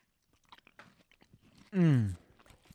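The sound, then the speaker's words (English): Quiet chewing of a bite of food with soft crunchy clicks and wet mouth sounds, briefly interrupted by a loud, falling hum of a voice before the chewing resumes. “Here, I want a bite.”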